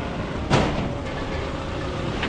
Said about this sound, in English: Back on the logistics ship, the Canterbury, the quayside at Picton is buzzing with trucks, tractors and cranes.